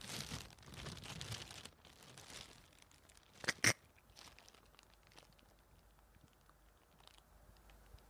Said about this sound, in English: Just, this is the cat walking on a plastic bag.